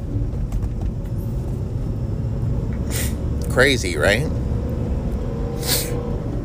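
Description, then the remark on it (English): A Ford Mustang's engine rumbles low and steady outside throughout, a continuous deep drone with no clear rise or fall, while a person briefly speaks over it midway. “Saw Texas is going to take the fucking inspection stickers off cars so that fucking asshole in his fucking Ford Mustang with the making the fucking noises fucking my podcast up.”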